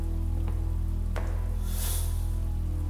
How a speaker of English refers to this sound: The drag marks lead towards a shower room in which they can hear water running.